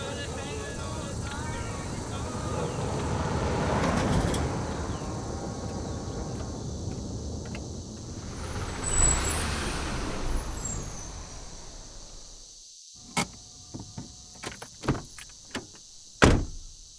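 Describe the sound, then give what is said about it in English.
An armored truck carrying a new prisoner rumbles into a prison driveway beside large steel doors and stops with a loud hiss of air brakes, followed by several sharp metallic clanks and thuds as the engine noise cuts out. “The armored truck that was carrying the prison's newest arrival pulled into the driveway next to the large steel doors that led into E Block.”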